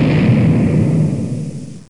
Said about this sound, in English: And on Twitter, he then posted a gif of an explosion. And Mike, just for you, here's an explosion.